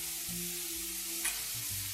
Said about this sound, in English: Just lifted the lid. This is perfect. It's ready. I'm just going to fluff it up with a fork Because naturally, when you steam it, it's a bit cakey and you want to fluff it up.